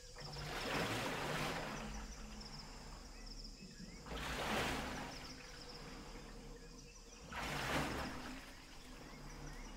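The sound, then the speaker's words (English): A boat glides along a river: water washes past in slow, rhythmic surges every few seconds over a steady low rumble, with faint insect-like chirps in the background. “And the boat starts going down the river.”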